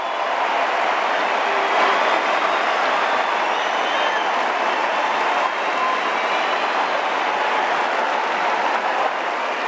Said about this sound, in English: I know the West Coast Eagles have been really struggling tonight, but hopefully there is some joy to take from this moment as people stand and applaud. A standing ovation for Josh Kennedy.